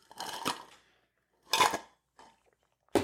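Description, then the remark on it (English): Someone sips iced coffee: a few short bursts of ice clinking and rattling against the cup, separated by brief silences, with no talking. “Let me get another little sip of my iced coffee.”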